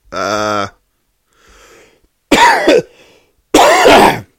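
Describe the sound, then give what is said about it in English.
A person coughs: a short throaty, voiced hack, a faint breath, then two loud, harsh coughs spaced about a second apart. “Why do I have to cough every time Randy talks?”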